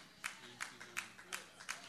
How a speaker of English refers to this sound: There's a few claps.